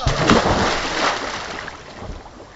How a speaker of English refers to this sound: The entire building sagged, and we watched one of the shooters fall the 200 feet into the river.